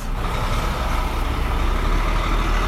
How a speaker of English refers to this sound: The film Wild makes it look very quiet, but there's a car toll booth here and there's lorries going across.